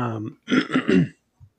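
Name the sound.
coughing and throat clearing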